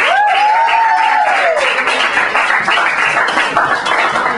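Steady applause from a comedy show audience welcoming a comedian to the stage, a dense, even wash of clapping that holds at full strength throughout, with a brief rising and falling whoop or whistle near the start.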